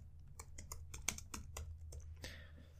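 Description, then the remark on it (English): Rapid, uneven keystrokes on a computer keyboard as someone types in a search to look up a fact, about a dozen sharp clicks in quick succession over a low steady hum, ending in a slightly longer rustling press. “I'm looking it up right now because this is a really important fact. Okay. Captain Cook. Okay. Typing it in.”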